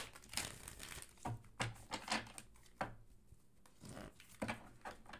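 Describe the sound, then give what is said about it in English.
Papery rustling and crinkling as question slips are shuffled by hand, a run of soft irregular rubs and flicks, with no talking over it. “Let's give us a good shuffle.”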